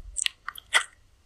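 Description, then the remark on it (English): A turtle bites and munches fruit, eating fast and swallowing without chewing: a few quick, moist crunching snaps, with the last and loudest one near the end, then quiet. No one speaks. “Yo, this turtle is eating.”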